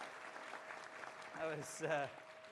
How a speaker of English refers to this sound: Oh, yeah, was that a round of applause when he started? Oh, hey, you guys.